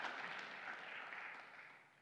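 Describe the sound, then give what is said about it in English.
A church audience applauds the church's 57% growth over two years in a steady, dense wash of clapping that holds for a couple of seconds and then gradually tapers off, with no voices over it. “Yeah, you should clap for that. You should clap for that.”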